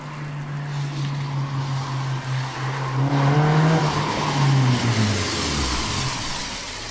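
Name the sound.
car pulling up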